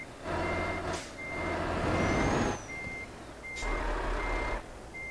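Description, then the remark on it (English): A truck engine rumbles while a steady reversing alarm beeps in long, repeating tones, broken by a couple of sharp clanks as a trailer couples on. No one speaks. “There we are, coupling with T. Coupling.”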